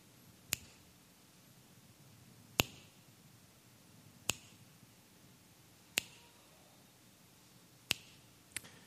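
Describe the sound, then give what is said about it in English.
Six sharp finger snaps ring out at a slow, slightly uneven pace, roughly one every one and a half to two seconds, each a crisp bright crack over a quiet low hum. “Every time I snap my fingers, somebody dies in the 1040 window without hearing about Jesus.”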